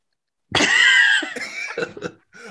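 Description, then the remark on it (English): A voice imitates a zombie's moan: one loud, drawn-out raspy groan lasting most of a second, then a few shorter choppy grunts trailing off. “And they're moaning like this.”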